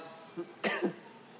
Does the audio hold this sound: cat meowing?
no